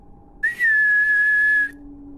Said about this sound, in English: I continued out the back door into the dark alleyway next to the dumpster. I whistled.